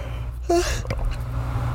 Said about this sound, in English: Sorry, I had to yawn.